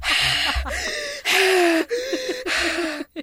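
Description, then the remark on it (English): A person loudly imitates excited heavy breathing, as when shaking gifts, a run of rapid, forceful in-and-out breaths with slight voiced pitch, uninterrupted by speech for about three seconds. “Yeah, like, we'll just, like, heavily breathing, like.”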